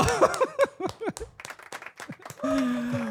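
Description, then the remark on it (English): Scattered, irregular clapping mixed with whoops and cheering voices welcoming guest Jillian Sakovits, host and presenter of MLS Season Pass on Apple TV, rising and falling at a moderate level for a few seconds, with a sustained shout near the end. “Everybody, big round of applause for Jillian Sakovits.”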